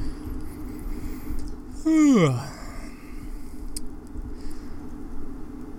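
Steady low road rumble fills the inside of a moving car driving about 2 km/h over the speed limit, with a brief, loud falling tone sweeping down near the middle before the even engine and tyre drone carries on.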